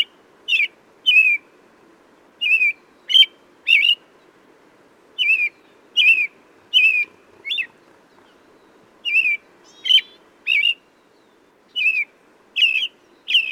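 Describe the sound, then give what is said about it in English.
An American robin sings a steady series of short, clear whistled phrases, rising and falling in pitch, delivered in quick groups with brief pauses between, loud over a faint background hum. “They've got a joyful, bubbly song that kind of permeates the neighborhood.”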